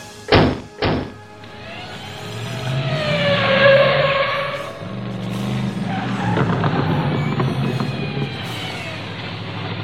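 Two quick door slams, then a car engine revs hard and pulls away with a rising squeal of tires skidding, the engine roar continuing loudly to the end.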